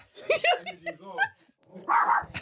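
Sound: dog barking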